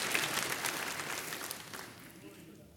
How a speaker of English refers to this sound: Give God praise. Give Him praise. Hey, clap for Him.